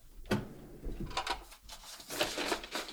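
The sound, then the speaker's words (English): A drawer slides open with a quick scrape, followed by soft rattling and shuffling as items inside are pushed around while someone looks through it, fairly quiet, with no voices. “All right, take a look in the drawer.”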